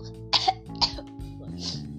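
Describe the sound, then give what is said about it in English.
A few short, harsh coughs in quick succession, fairly loud, followed by a softer throaty rasp, all over a low steady background hum. “I've been coughing since last year.”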